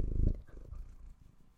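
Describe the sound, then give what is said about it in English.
A cat named JJ purrs close to the microphone, a low rumbling vibration that starts loud and fades to a softer, steady purr over a second or so. “Do you want to purr into the mic?”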